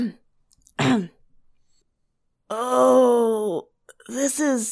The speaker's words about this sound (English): So I'm just going to kind of clear my throat for a second.